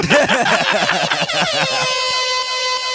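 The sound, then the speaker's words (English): A loud air horn sound effect: a rapid run of stuttering, wavering honks that settles into one long, steady, brassy blare, with no voices over it. “Air horn.”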